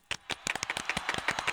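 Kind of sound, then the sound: human body sound, hand clapping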